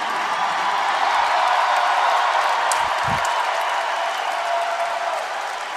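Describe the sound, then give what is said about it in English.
A large crowd roars and cheers without letup after the Illinois Illini win the match 3-1 and head to the Final Four: a dense wash of voices and applause holding steady and loud throughout, with a few brief low thumps partway through. “Crowd on its feet.”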